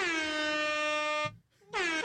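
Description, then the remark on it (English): A loud, brassy air horn blares in a long sustained blast, cuts off briefly, then starts blasting again right away, overpowering with no voices; three air horns in all. “I gave you 3 air horns.”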